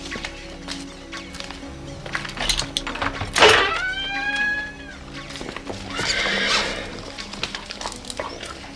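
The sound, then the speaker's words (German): A horse gives a loud, quavering whinny near the middle, with hooves clip-clopping and shuffling on hard ground throughout, plus faint barn noise in the background, at an animal trainer's premises where horses and pigs are kept. “Und hier sind die Pferde und die Schweine.”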